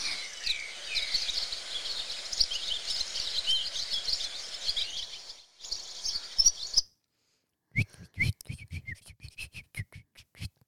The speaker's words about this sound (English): Okay, swallow. Make a noise of a swallow. Okay, hold on. Swallow sound. Swallow. Bird. Sound. Here we go. It's going to sound much nicer.